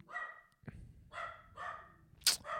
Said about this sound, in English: It seems like, honestly, Terry only barks when I'm doing the podcast.